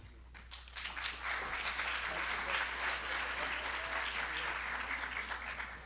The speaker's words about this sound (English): Yeah, let's give him applause. Give applause.